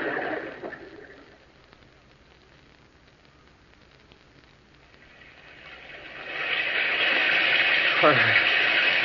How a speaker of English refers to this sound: There's no sun, only this rain.